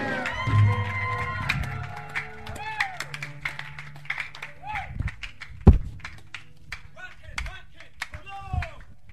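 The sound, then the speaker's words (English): A church audience claps and shouts amen together, with scattered sharp hand claps, overlapping voices calling out, and a loud thump partway through, the noise staying dense and steady throughout. “In the name of Jesus, somebody shout the loudest amen in the church. Clap your hands and say, "Be the most I got tonight."”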